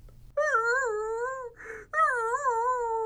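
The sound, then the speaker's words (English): A dog whimpers in two long, wavering whines separated by a short pause, fairly loud, with a faint low rumble underneath and no one talking. “What? Stop whimpering. You had your steak.”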